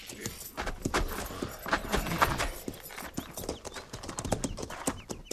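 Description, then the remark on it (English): Several horses' hooves clip-clop in an uneven, overlapping rhythm as the mounts are led down to a stream to be watered, with light metallic jingling mixed in among the steady hollow knocks. “Ease those cinches and lead the mounts down to the stream there in water.”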